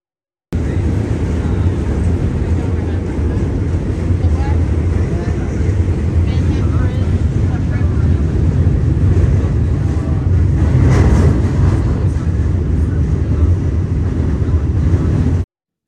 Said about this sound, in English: I'm talking about a place where you go down in the ground and get on a train. If you've never been on a New York train or subway, it's just amazing because that's the way so many people have to get around. The sights and sounds are like nothing else.